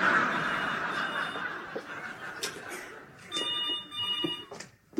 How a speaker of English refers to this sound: Yeah, this is Hyacinth getting a phone call.